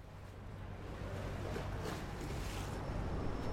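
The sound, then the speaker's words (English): Steady outdoor riverside ambience on the Victoria Embankment by the River Thames in London, at Cleopatra's Needle: a low engine-like rumble under a broad wash of water and wind, with soft surges of noise rising and falling, continuous and moderately loud, no voices. “We've walked down from the Old Bailey, down through London to the shores of the Thames.”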